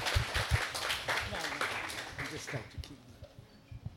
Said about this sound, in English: A round of applause.